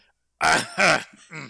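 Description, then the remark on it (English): Three short, throaty coughs in quick succession, fairly loud, the last one softer, with a rough voiced quality and no speech around them. “I think I'll just cough.”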